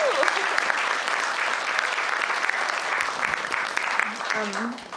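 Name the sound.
round of applause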